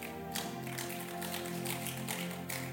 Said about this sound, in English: Give the Lord a clap and take your seat. That clap is not good.